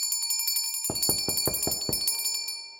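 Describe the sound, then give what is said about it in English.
A bell rung hard and fast: a quick run of bright metallic dings, then about six louder, heavier strikes, with the ringing tone lingering as it fades. No voices. “I ring the bell harder.”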